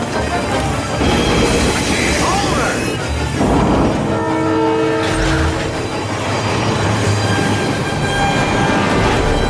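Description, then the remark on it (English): Steady, loud rumbling train motion runs throughout, as Superman saves the train in a film scene, with rhythmic mechanical chugging beneath a dense orchestral score; sustained horn-like tones swell briefly in the middle. “Then, he saves the train. Same thing, but this time with train motion.”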